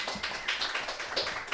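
A steady patter of applause from a small crowd, many hands clapping together in a dense, continuous wash at moderate volume with no talking.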